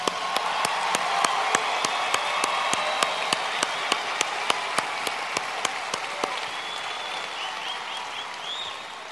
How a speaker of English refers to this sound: So I'd like all the students to give the advisors and the judges a round of applause.